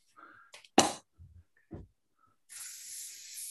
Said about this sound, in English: Oh, spraying. Spooky.